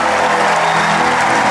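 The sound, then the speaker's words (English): An audience claps hands in praise to God in a dense, sustained burst of applause, loud and steady throughout with no clear individual rhythm, like a roomful of people clapping together. “Give the Lord a mighty hand clap.”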